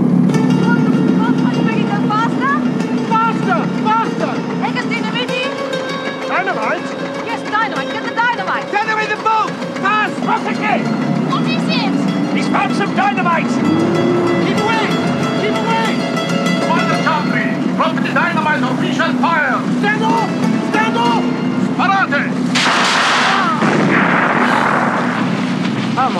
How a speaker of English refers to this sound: There's also a chase scene. There is, of course. We have our obligatory additional chase scene on motorboat, no less.